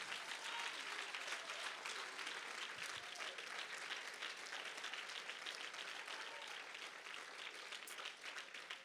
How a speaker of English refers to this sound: I wonder if you're with me right now, could you stand and give God a hand clap of praise?